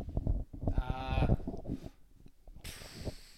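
A cow moos once, loud, a low drawn-out bellow lasting about a second, followed by quieter rustling and a burst of hissy noise toward the end.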